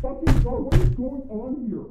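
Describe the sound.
Two heavy, booming knocks pound on a wooden door in quick succession, close and loud, while a voice talks underneath them.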